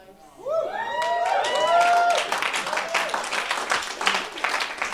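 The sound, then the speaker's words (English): An audience gives what is called a Christian clap, a dense patter of many hands, with a few rising whoops and cheers over the first two seconds before the applause carries on alone at a moderate level. “It's still a bit of a Christian clap.”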